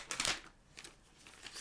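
Quiet paper rustling: a crisp crinkling burst at the start, then a few softer scattered rustles and crackles as a sheet is handled and unfolded.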